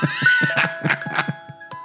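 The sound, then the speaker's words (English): Bright Christmas bells chime out a quick, rhythmic jingle, ringing tones pulsing several times over a sustained shimmer, fairly loud with no one talking. “Listen to these Christmas bells.”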